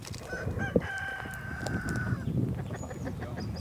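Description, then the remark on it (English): A flock of chickens clucks and murmurs in a field under a silver maple tree, while one rooster lets out a long, drawn-out crow that rises over the steady, busy chatter of the birds. “Out in the field, a flock of chickens hang out under a silver maple.”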